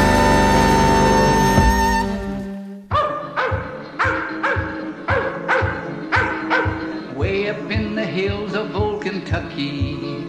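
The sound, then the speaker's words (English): A hunting dog barks loudly, about a dozen sharp barks in a steady, fast rhythm, following a few seconds of a sustained droning tone. “Every farmer has a savage hunting dog.”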